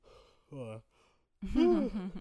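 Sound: yawn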